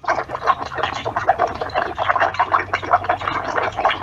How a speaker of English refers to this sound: I'm a little embarrassed to say that I recorded it lying in bed with my fan blowing.